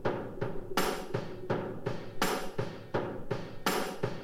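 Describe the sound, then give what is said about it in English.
A shovel is struck like a drum in a steady, quick beat of metallic clangs, with a heavier accented hit every few strikes and a ringing metal tone sustained underneath. No one speaks. “And someone banging a shovel.”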